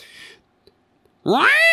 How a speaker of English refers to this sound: A cat screeches over the loudspeaker, meaning it's time for dinner at the Shane Dawson Maximum Security Prison, or to have a conjugal visit.